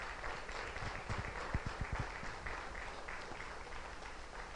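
An audience gives a clap offering to Jesus, applauding steadily, a dense wash of many hands clapping for several seconds, with a few sharper individual claps standing out midway before it settles back into a steady roar.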